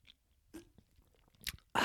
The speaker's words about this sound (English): Yep, sipping out of my LaCroix.